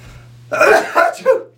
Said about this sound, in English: Wow. That is the first sneeze that we've ever had. That's the first one. It made up for a lot. I tried to hold it as much as I could.